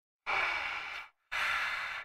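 Two heavy, forceful breaths, loud and close, each lasting under a second with a brief pause between them, harsh and airy like someone huffing in anger. No talking.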